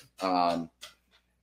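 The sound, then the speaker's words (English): One of the speakers' own dogs lets out a loud, drawn-out yelp followed quickly by a shorter, sharp bark, excited-sounding, with no talking around it. “Our dogs are crazy, guys.”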